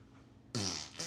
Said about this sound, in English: I have a video of you farting on me.